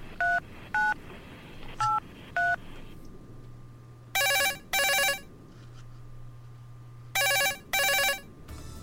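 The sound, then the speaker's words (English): A few quick keypad dialing beeps as a helpline is called, then a telephone rings on the line in two loud double-ring bursts separated by a pause, with a low hum between them and no voices. “So what we're going to do, let's ring the helpline and see who we get put through to and who's going to answer our questions today.”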